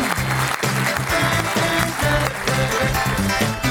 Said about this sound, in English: Crowd goes wild.